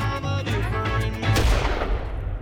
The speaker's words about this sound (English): We wake up with these piercing close gunshots.